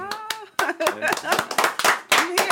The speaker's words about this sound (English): It's all for you. Some claps?